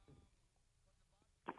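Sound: phone keypad tones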